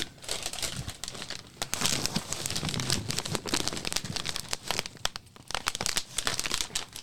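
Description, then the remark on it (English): Snack bags in roasted crab and roasted cumin lamb skewer flavors are held up, rustling and crackling continuously for several seconds, a busy, bright plastic crumpling with sharp irregular crunches and no talking over it. “Let me hold them up.”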